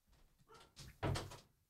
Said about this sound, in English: All right. Good. Door's closed now. The door's closed.